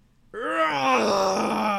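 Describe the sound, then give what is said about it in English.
A female video game character's sustained yell, a strained, harmonic-rich groan that rises abruptly after a brief silence and holds loud and steady to the end, with no talking over it. “Oh, she finishes yelling and even grits her teeth afterwards.”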